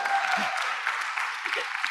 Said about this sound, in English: And that's right, you could give me a applause.